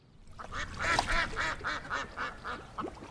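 Ducks at a pond quack in a quick, steady run of about nine nasal calls over a few seconds, fairly loud, with a faint outdoor hiss behind and no talking.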